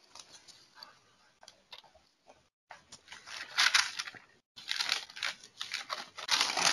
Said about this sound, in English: I love when I hear your pages turning. Crackle, crackle. I picture your crinkly Bible pages and they're all marked up.